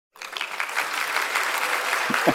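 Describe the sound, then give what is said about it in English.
A burst of applause starts abruptly and holds steady as a dense wash of clapping, with a few voices cheering near the end. “Yeah, we had to get the cheer ups.”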